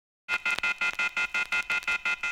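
A rapid, evenly spaced run of about ten identical electronic telephone beeps, loud, each short tone cutting on and off in a steady rhythm with no voices.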